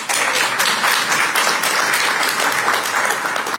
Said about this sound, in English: Cue the applause